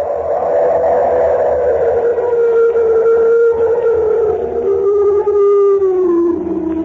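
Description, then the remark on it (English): A loud, drawn-out animal roar of a mountain monster on a high mountain pass leading across the Tibetan border, howl-like and wavering, holds for about seven seconds and slowly sinks in pitch at the end. It sounds powerful and violent enough to shake the ground, with no other sounds around it. “Oh, heavens, it was an animal, unquestionably. Why, it was so loud, so violent, that it actually shook the ground under my feet.”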